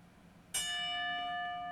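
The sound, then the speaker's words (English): A single bell is struck once as part of a ten-bell tribute to the late wrestler King Mabel, also known as Viscera, ringing out loudly with a bright metallic tone that hangs in the air and slowly fades, with no voices over it. “That's why we need to do the 10 bells again for you.”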